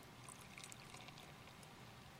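Welch's sparkling grape juice, used as Communion wine, pours steadily into a glass in a home, a soft continuous trickle with faint bubbling glints, quiet for a couple of seconds with no voices.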